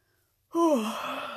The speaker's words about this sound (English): I don't know why I'm yawning.